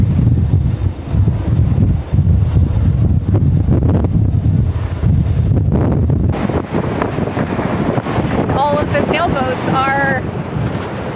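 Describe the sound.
Heavy high waves roar and crash against a pier, a loud, constant churning buffeted by wind, with a person's voice speaking over the surf toward the end.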